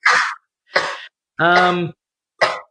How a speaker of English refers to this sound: Ooh, you're one of those multi-sneezers. Oh, yeah, at least four. Oh, and her sneezes, I don't know how it sounds on the mic, but they sound exactly like coughs, and they are the sharpest, piercingest, raspy sound.